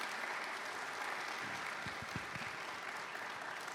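Steady audience applause as a woman is invited to come down onto the stage, a dense, even wash of many hands clapping that holds at a constant level throughout, with a few low thumps near the middle and no voices.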